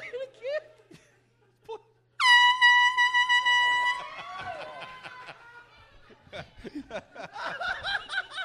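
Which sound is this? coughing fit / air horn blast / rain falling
air horn blast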